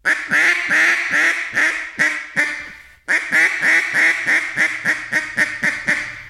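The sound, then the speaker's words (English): A duck call blown in a steady, dragged-out boss hen cadence: a run of loud, nasal quacks, about fifteen in two drawn-out series with a brief pause between, clear with no talking. “So when you do a cadence on a boss, you kind of drag it out, but it has a distinct sound.”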